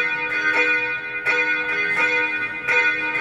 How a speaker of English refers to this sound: I like this beat. Beat's interesting. Well, the sample's interesting. Mm-hmm. I like these bells.